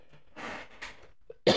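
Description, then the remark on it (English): Several breathy coughs in quick succession, the first two muffled and rough, followed after a short pause by one sharp, loud final cough. “And I'm gonna cough.”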